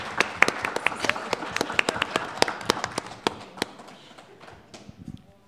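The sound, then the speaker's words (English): Audience applause: a burst of brisk, irregular hand claps at moderate loudness that thins out and fades over the last couple of seconds. “We're going to give a big round of applause.”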